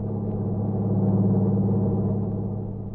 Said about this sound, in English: Then he saw the lights of a truck approaching. It passed him at high speed.